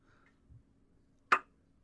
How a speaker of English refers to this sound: I can only whistle and snap my tongue. I don't even want to go to that second one. I'll show you real quick.